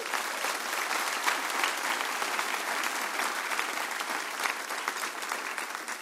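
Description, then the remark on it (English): Sustained applause from a large church audience across all campuses, honoring the Littleton campus pastor couple on their one-year anniversary, a dense, steady patter of many hands clapping at once, holding an even loudness for the full six seconds with no voices rising above it. “So at all campuses, will you clap for them and honor them?”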